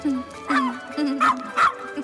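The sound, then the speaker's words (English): The dog Scraps, a deceased childhood pet given back as bones, barks three times in short, yappy bursts spaced about half a second apart, clear, over a steady low hum in the background. “Her wedding present to him is the bones of his deceased childhood pet. Scraps. My dog Scraps.”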